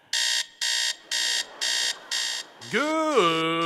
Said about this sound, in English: Why do I have that crazy alarm clock?